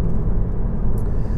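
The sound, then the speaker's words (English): A steady, low rumble of road noise fills the cabin of a moving car, constant and fairly loud with no voices, a brief faint high tick near the end. “Well, I'm going to be testing this out as I go on my drive today, because we've got the new update.”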